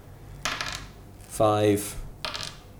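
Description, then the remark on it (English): Two short, bright clattering rattles of dice tumbling across a hard surface, one eight-sided die rolled repeatedly for a 5d8 Sleep spell in a tabletop game, separated by a brief pitched vocal sound in between. “I'll just roll this one 5 times.”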